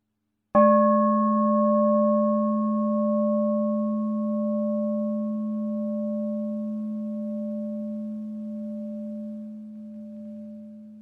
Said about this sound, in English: Well, now I'll ring the gong and we'll sit for a minute or two.